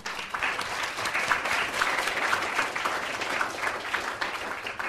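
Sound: audience applause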